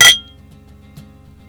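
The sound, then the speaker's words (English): Glasses clink together once in a toast, a bright chime that rings briefly and fades, followed by a faint soft tap over a low background hum. “Well, cheers. Cheers to that.”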